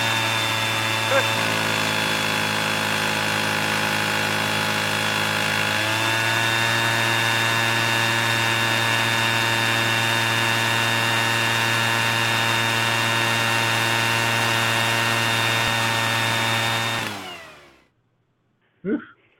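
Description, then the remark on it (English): A leaf blower runs outside, roaring steadily for about seventeen seconds as lawn workers come by after mowing and weed eating; its droning engine pitch shifts slightly a couple of times before it cuts off abruptly, followed by a brief knock. “Come by with the lawn, with the leaf blower. Leaf blower.”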